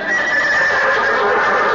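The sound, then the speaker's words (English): A horse whinnies loudly, one sustained, wavering neigh that fills the whole short moment with no one talking. “Oh, no, you just called her horse is all.”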